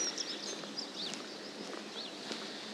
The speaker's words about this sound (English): And you can still hear all the birds singing away. So I'm just actually walking down towards Mullion Cove.